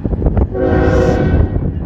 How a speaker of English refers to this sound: Like, you got this a car was just going through and the train tracks was coming, the train's coming, and the car just went around the barricade just to go around.